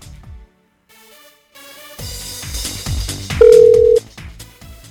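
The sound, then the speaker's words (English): A single steady electronic phone tone sounds for about half a second, like a ring on the line as a DJ is called during a live radio broadcast, over loud, busy background music. “Let's see if we can get him on the phone here.”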